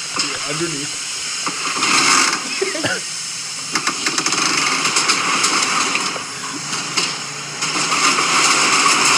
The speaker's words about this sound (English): There goes the jet loader.